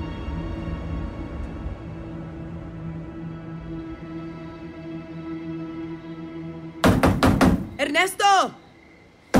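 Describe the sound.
Four quick, loud knocks on a door break through a steady low background hum, then a raised voice calls out right after them.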